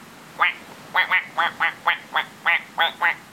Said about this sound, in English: I'm trying to lure a virtual duck out of the plumbing regulator system.